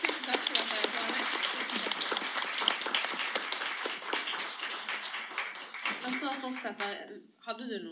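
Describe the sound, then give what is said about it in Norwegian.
A short burst of applause from a small group for two guests on their way out, dense irregular clapping for about six seconds before it fades, followed by a voice starting to speak. “men vi bare gir dem en sånn liten applaus på vei ut.”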